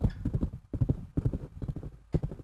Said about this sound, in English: Giddy up, horsey. And he whipped the horses. And the horses began to gallop quickly. And it picked up even more speed.